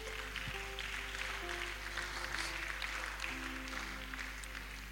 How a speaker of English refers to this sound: Thank you, Lord Jesus. You see, God, actually, you should clap for Jesus. Clap for Jesus.